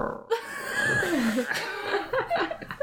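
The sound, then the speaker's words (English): A voice mimics a stomach growl with a low, wavering gurgle that slides up and down in pitch, ending in a few short bubbly bursts, fairly loud. “He just keeps staring, but you can hear his stomach growl.”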